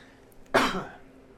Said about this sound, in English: It's not coughing up blood. It's not dying. Coughing.